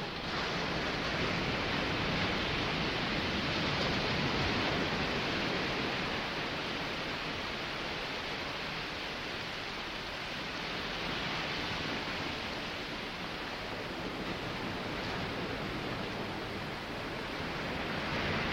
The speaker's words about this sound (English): why we shouldn't at all be surprised that in an age in which water is bottled and sold, something like the ocean and the sounds of the ocean would be packaged, perfected, and resold to us.